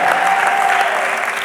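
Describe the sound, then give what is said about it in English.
An audience claps together at the preacher's urging during a sermon, a dense, steady burst of applause that stays loud and even throughout, with a faint sustained tone running beneath the clapping. “Oh, come on, clap, in a dream.”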